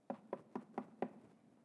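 Five quick, sharp, evenly spaced knocks on a wooden door, followed by a short silence.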